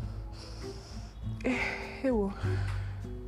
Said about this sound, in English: So hard to breathe in sometimes. Okay, so breathing. Hold and breathe out. I'm trying to make it as loud as possible so you guys know that I'm actually breathing in and breathing out,